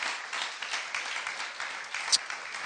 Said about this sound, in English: Why don't we give these kids a cheer as they go downstairs to Treasure Kids?